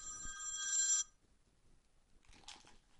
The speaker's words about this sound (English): my phone's ringing. I wonder who that is.